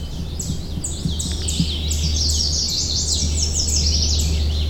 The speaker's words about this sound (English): We're greeted with a cacophony of bird calls. Take a listen and see how many birds you can identify.